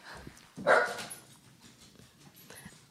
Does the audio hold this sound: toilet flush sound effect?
no